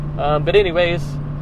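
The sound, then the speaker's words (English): A car drives steadily along a smooth paved road, its low engine drone constant throughout, while a voice briefly sounds over it for about a second. “Finally getting on the pavement.”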